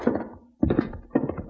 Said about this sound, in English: I always feel a little strange when the door closes behind me in a marshal's office.